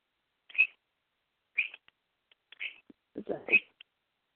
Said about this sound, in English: Salty Bird, calm down, buddy. Oh, he's extra excited. Someone's going live on Facebook. Yes, apparently Pony Bird's excited too.